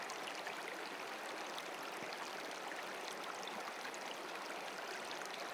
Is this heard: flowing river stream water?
yes